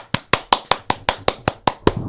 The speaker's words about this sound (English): Round of applause for our new president.